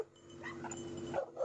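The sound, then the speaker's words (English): A couple of dogs barking at a loose billy goat wearing a collar, a couple of short yappy barks near the end over a steady background hum, with no one talking. “There's a dog's got involved now. A couple of dogs.”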